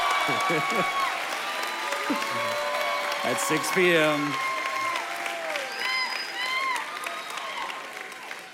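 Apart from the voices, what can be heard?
audience clapping and applause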